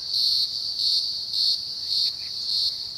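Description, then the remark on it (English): A loud, shrill green grocer cicada hum drones steadily around a high pitch, pulsing in regular swells about twice a second, continuous with no voices. “This humming noise is from a cicada called the green grocer because, well, it's big and green and it likes eating its vegetables.”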